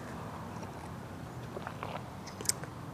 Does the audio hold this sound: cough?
no